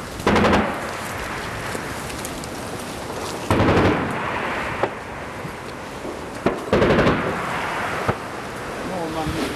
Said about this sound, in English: The Russians are only 500 metres away. That's automatic fire. All along this line, it's grenade fire, automatic fire, and tank fire. It's really dangerous there. Bullets are flying everywhere.